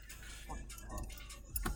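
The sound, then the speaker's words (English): Keys jangle and clink in a few short, scattered bursts, fairly quiet, with a louder rattle near the end as they're tugged free. “Bro, I gotta get these keys out of this bitch.”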